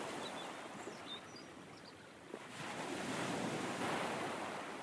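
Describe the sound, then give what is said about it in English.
Sea waves wash and break on a shore in a continuous roar that swells louder halfway through, with some wind noise mixed in and no voices. “I quite like the sound of water flowing, like a waterfall or the sea.”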